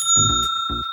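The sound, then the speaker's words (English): A small hotel desk bell is dinged once, bright, its clear metallic tone ringing steadily throughout the second while low voiced sounds briefly come and go underneath. “there's a little hotel bell that Molly's had since the series”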